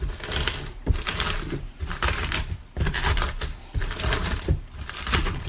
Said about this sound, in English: And you're pushing down, wanting to get it, like, you know, you want to bring the water out of the cabbage. Your hands gotta look a little bit, you know, you gotta work it, so.